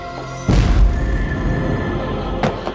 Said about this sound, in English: Moments later, an explosion rocked the building, killing her colleague who worked next door.